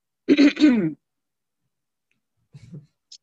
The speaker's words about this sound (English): She finna cough, that's what it is. She trying not to cough. I was trying to clear my throat. Not working right now, but anyway.